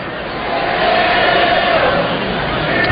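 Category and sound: crowd, ballpark crowd cheering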